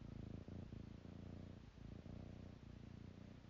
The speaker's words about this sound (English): Yes, my little kitty Sattva is purring.